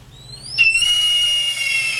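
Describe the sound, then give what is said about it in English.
A red-tailed hawk's screech: one long, loud, piercing cry that rises sharply, then holds as a harsh, drawn-out scream that slowly trails downward over about two seconds, with no voices. “That is a hawk, Sean. That is a red-tailed hawk.”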